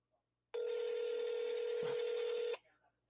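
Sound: telephone dialing and ringing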